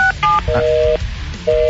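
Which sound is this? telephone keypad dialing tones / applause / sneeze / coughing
telephone keypad dialing tones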